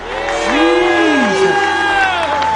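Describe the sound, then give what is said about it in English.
An audience claps and cheers loudly and continuously as a clap offering of praise to Jesus, with several voices whooping and shouting above the steady wash of applause, full throughout. “Give Jesus a clap offering of praise.”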